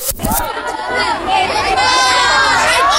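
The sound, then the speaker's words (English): A crowd of students shouting and wailing over one another, pleading with teachers during a public burning of their phones as punishment. Loud, with overlapping high-pitched cries and frantic pleading calls filling the whole stretch without a break. “Kasihan, man, you can hear the students pleading with the teachers screaming like they were on fire.”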